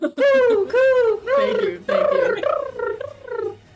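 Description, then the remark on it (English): A voice does a warbling pigeon imitation, made on request as the "metagaming pigeon sound": a run of five or six throaty, rising-and-falling coos, loud and continuous at first, then tapering into shorter, softer calls. “Can someone make the metagaming pigeon sound?”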